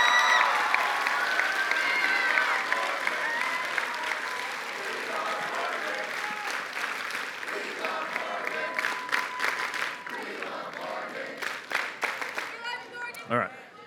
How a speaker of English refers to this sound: But for those that are, would you just give them a round of applause? Would you give them a standing ovation?